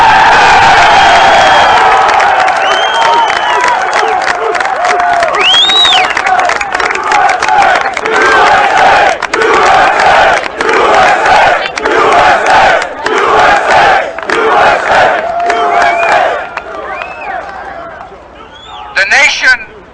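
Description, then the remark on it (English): A large crowd shouts and cheers loudly and continuously, voices overlapping in a dense roar with rising whoops and chants that swell and ebb before fading out near the end. “I can hear you! The rest of the world hears you, and the people who knocked these buildings down will hear all of us soon.”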